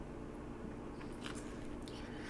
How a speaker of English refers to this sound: Keep talking so you don't have, don't have to listen to you slurp on your call.